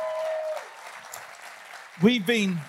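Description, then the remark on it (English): An audience claps steadily for about two seconds as a speaker introduces his wife, a dense wash of many hands, before a voice cuts in over the tail of the applause. “We've been married over 50 years, and hey, I deserve the clap, man.”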